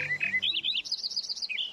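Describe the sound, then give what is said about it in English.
A Lincoln's sparrow sings energetically from a hedgerow on an October morning, a rapid, bubbling run of bright warbled notes and trills rising in pitch. The song is clear, with no other sounds around it. “In the golden sunlight of an October morning, a Lincoln sparrow sings energetically from a hedgerow.”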